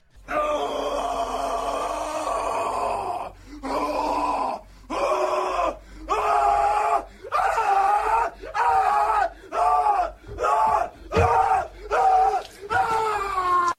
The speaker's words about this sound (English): But for me, in terms of ever thinking about this movie again, or even thinking about it halfway through, I'm going Nick Cage horror scream.